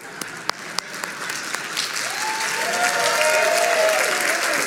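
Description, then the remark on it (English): A few hesitant, scattered claps from an audience quickly swell into dense, steady applause that grows louder and holds to the end, with faint voices rising within it. “See how everybody's afraid to clap because they don't think it's Christ-like.”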